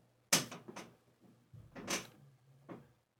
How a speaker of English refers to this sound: I got to get this chair oiled or get me a new chair. This thing is just too darn squeaky.